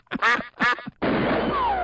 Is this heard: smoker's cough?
no